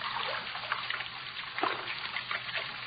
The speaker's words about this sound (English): That sound. Running water. Over this way.